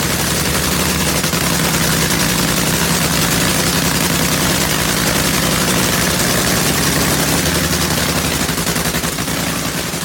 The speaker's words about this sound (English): Wonderful sound that is, the sound of a nitro funny car warm up.